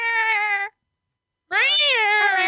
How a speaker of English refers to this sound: Cat's going to be in the background. I'm just warning you.